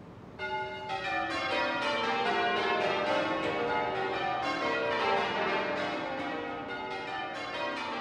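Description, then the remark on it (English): The twelve bells of Southwark Cathedral ring out in steady rounds, striking one after another from the highest note to the lowest in a descending cascade that repeats, loud and resonant with overlapping ringing tones. “They've just started to ring now, and they started off ringing all 12 bells from the highest note to the lowest. And at this point, they're just ringing them in rounds, and you can hear that there are 12 bells involved in this.”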